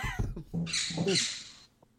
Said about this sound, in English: The squawking gets progressively more aggressive.